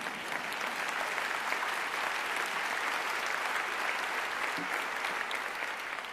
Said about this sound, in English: Absolutely, please clap for her.